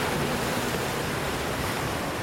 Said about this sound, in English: They've decided to make a stop to Janjuk Beach before the long drive home. This beach is full of rough waves, large swells, and is often a surfer's delight.